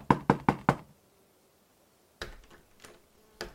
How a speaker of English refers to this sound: He then shrugged and knocked.